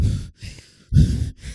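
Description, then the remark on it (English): A voice imitates a man's heavy breathing: four loud, breathy in-and-out gusts in quick succession, each a rough airy rush with low rumble, separated by brief pauses. “Like him breathing is heavy as fuck.”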